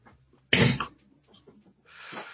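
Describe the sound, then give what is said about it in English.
One sudden, loud sneeze bursts out, followed a moment later by a softer breathy exhale; no talking is heard. “God bless you, ….”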